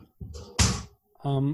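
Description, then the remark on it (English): A cat knocks over a sign, which topples with a sudden, loud clattering crash, a single short impact, followed a moment later by a brief burst of a person's voice. “My cat knocked over a sign.”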